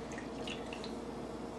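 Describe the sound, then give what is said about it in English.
Water dribbles and drips steadily out of bread soaked in water as it is squeezed to remove all the water, a soft, continuous trickle with no talking. “Nicely soak it and then just squeeze it out, squeeze out all the water.”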